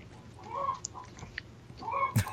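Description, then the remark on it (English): Several chickens cluck and murmur in short, overlapping bursts, with a sharper squawk and a brief thump near the end over a low background rumble. “Oh, yeah, chicken. Oh, chickens.”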